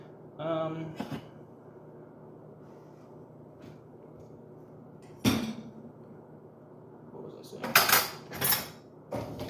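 Dishes, pots and cutlery clink and clatter in a few separate bursts as someone washes dishes, with a sharp knock midway and a busier cluster of rattling near the end over a low, steady background hum.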